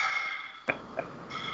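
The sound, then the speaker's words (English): A single abrupt sneeze from Steve-O bursts out over a steady background hiss, followed a moment later by a softer, shorter snuffle. No one speaks. “Bless you, Steve-O.”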